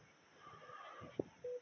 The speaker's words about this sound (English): Oh my God. It's going to kill me here. I guess that's a Telegram that's just beeping its head off.